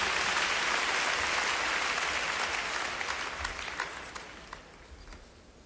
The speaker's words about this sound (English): If you'll clap your hands one more time as you're seated.